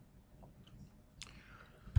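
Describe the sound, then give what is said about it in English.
A quiet sip of beer: a short slurping intake of liquid followed by a soft wet mouth sound, then a sudden low thump at the end. No one speaks. “All right, let's take a sip.”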